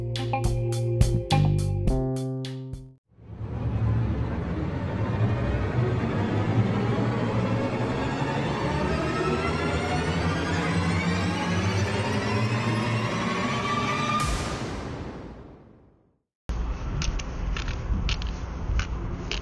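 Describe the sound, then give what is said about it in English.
A white cane scrapes and taps steadily along pavement as someone walks to the nearest bus stop, a continuous gritty, crackling rasp that runs for about ten seconds after a short musical opening, then breaks off into a thinner hiss. “You're hearing is me walking with my white cane to the nearest bus stop.”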